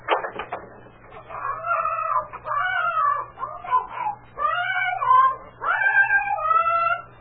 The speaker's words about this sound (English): It's a parrot. Yeah, it's a parrot. I remember now that Francis girl said Mrs. Benton put the bird out here because it got on the old man's nerves.